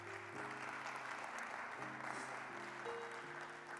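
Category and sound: crowd, audience hand clapping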